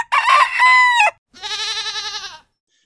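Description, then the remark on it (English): A pet chicken crows loudly in one long harmonic call, then after a brief pause gives a second, pulsing run of clucks. No speech is heard. “I have five pet chickens, and they feed me every day.”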